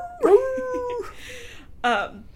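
A short, tonal wolf howl sound effect rises and holds for about a second, followed by a brief second yelping cry. Both are loud, with no talking over them.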